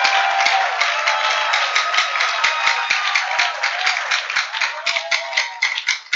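An audience claps their hands for the Lord Jesus Christ in sustained, dense applause, many overlapping claps forming a steady loud wash of sound with no voices standing out.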